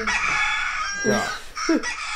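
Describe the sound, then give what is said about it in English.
A loud rooster crowing sound played as a backup alarm tone waking someone at 4:30 in the afternoon: a bright, strained cock-a-doodle-doo with a rising, then falling pitch, filling the whole short clip with no talking. “This is my backup alarm. It works!”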